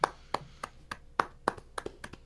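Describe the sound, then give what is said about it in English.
A short burst of hand claps, about nine sharp slaps in a quick, slightly uneven rhythm, moderately loud with no voices over them. “I'll take the clap.”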